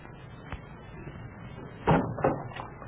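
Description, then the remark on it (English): A faint click, then a door swings and shuts with a solid thud followed by a couple of lighter knocks, over a quiet room hum. “Close that door.”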